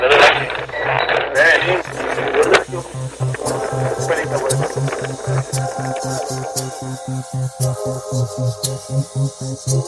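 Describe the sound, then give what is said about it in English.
An air conditioner is switched on at its switch and runs with a low, steady mechanical drone that pulses rhythmically, following a burst of hissy noise and muffled voices at the start. “So what this guy does is turns the switch, the air conditioning, starts to cover up, to make noise, to cover up.”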